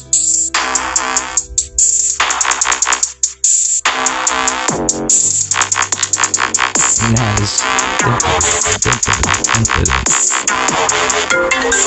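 A phone ringtone beat plays loud, bright synthetic melodic tones repeating over a steady electronic rhythm for the whole stretch, with no one talking.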